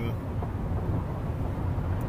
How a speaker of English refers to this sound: And if you can hear any background noise at the moment, it's because I'm driving in my car at the moment. I'm driving to the Masters Worlds in Vegas.